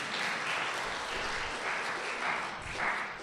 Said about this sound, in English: Thank you for having me. Let's give Jonah a round of applause.